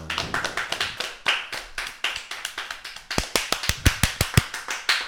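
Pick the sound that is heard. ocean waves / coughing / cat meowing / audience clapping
audience clapping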